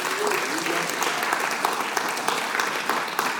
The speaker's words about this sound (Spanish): Fuimos ministrados por ustedes en el día de hoy. Gracias, gracias. Un fuerte aplauso a ellos.